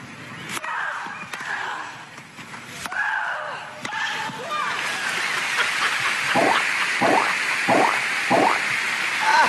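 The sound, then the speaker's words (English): Tennis players Venus Williams and Maria Sharapova grunt and shriek with high, drawn-out cries between a few sharp ball strikes during their match, then a steady wash of crowd noise with bursts of clapping takes over. “This is Venus Williams versus Maria Sharapova.”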